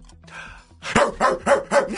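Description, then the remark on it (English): A dog barks in a quick run of about five sharp, loud barks at an even rhythm, following a brief stretch of quiet murmur. “I wait till she put her head down and then started barking.”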